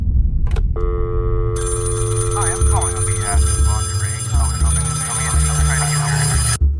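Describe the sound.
A telephone rings steadily for several seconds, a loud, sustained electronic trill over a low rumbling hum, with faint voice-like sounds blending into the ringing.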